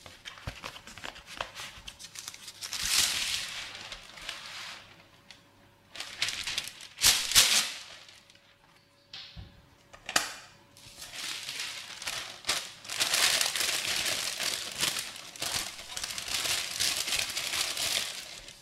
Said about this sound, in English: But I'm just going to take baking paper and kind of ruffle it around and just let it sit pretty snugly on the bottom. But the sides can be a bit messy. Let the paper come at the sides because as it bakes, the batter will expand.